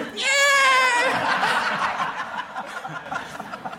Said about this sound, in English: Can we just hear the buzzer